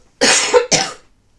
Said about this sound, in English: Sorry, I just need to cough.